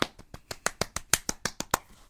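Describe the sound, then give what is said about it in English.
A quick run of about a dozen sharp hand claps in a steady, fast rhythm, each one crisp and bright, with no voices over them. “That was such like random clapping.”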